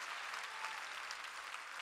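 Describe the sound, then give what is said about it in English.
An audience claps their hands in praise of God in steady, dense applause, many overlapping claps forming a continuous bright crackle with no voices standing out. “Clap your hands that you love and serve a God with a God of restoration.”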